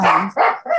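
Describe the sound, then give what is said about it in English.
Dogs barking in three quick, loud bursts, each bark following right after the last with no talking in between. “You know, I still tried to maintain some semblance of normalcy while wrapping my head around while my dogs interrupt as usual.”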